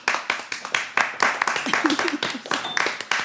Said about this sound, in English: Just layer that so it looks like there are more people applauding? Clapping for him.